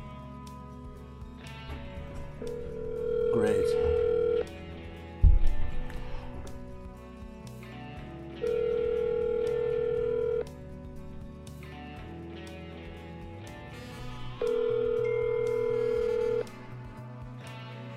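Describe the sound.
A phone call rings out through the earpiece: three steady two-second ringback tones, evenly spaced and fairly loud, over a low background bed, with a brief thump and a single spoken word.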